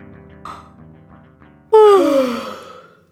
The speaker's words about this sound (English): But on the sixth day, the boy woke and yawned.